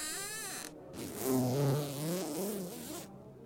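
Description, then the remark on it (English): A zipper is drawn up the back of a costume: a quick first tug, a brief pause, then a longer buzzy, rasping pull of moderate loudness with no voices. “Just the zipper at the back to do up.”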